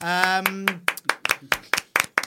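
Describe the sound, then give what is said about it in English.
A brief sustained vocal tone, then a quick, steady run of about eight sharp hand claps, like a small, spontaneous burst of applause. “Spontaneous round of applause.”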